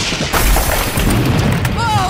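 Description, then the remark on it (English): A glass jar of pickle water bursts apart in a sudden lightning blast: a loud, booming crack with crackling debris over a low rumble, fading into thin high ringing tones at the end. “Glass shatters, and little bits of glass go flying everywhere.”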